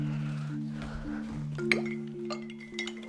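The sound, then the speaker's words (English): Ice cubes clink into a glass for iced coffee in a few bright, irregular taps and rattles over a steady low hum, with a sharper clatter near the middle and another at the end. “I'm gonna add a little of ice, because I prefer, if you guys don't know, I like my coffee iced.”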